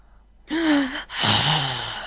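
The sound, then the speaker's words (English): Two heavy, rasping breaths, a long inhale followed by a drawn-out exhale, with a hoarse, wheezy tone and no talking. “Breathing sounds increasingly labored.”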